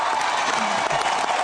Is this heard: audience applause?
yes